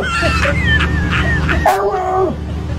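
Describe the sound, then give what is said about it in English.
A dog gives a short series of yippy, whining barks, the last one drawn out into a two-part vocalization that sounds almost like a spoken "hello," fairly loud over a low background hum. “That's a clip of a dog that sounds like it barks hello.”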